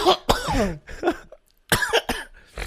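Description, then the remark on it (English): A series of loud, harsh coughs as someone leans into the microphone, several bursts in quick succession with short raspy, voiced tails and brief pauses between them. “oh my god, you leaned into the mic to cough like you're John Belushi.”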